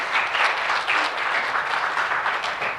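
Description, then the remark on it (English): Steady audience applause for a man who has been a dad for 60 years fills the space, a dense wash of many hands clapping at an even, fairly loud level throughout, with no voices standing out above it. “Let's give him a round of applause for being a dad.”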